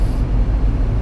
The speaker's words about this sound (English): Sorry if you guys hear everything going on the outside, the car, this thing's power steering pump whines.